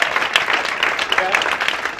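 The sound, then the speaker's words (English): A crowd applauds steadily, many hands clapping at once in a dense, continuous patter at moderate loudness, with a murmur of voices underneath. “Come on, give me a clap. Come on, clap.”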